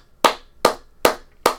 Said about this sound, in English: So I want to give a round of applause again.